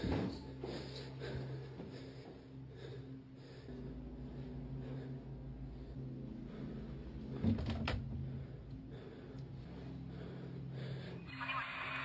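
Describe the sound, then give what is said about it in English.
A door opens in a video being played, with a brief knock and scrape partway through, set against a low, steady background hum and quiet background noise; no one speaks. “The door open.”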